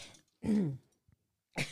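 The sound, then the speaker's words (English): A woman gives a few rough coughs in quick succession: a short burst, a louder throaty hack, then another cough after a brief pause, with no talking. “Oh my gosh, she's right coughing.”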